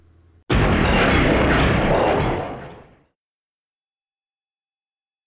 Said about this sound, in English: My ears were ringing.